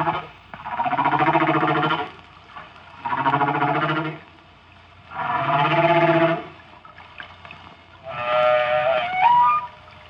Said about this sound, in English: Humpback whales are not only singers, but also irrepressible composers. They may be the only animal besides man for which this is true.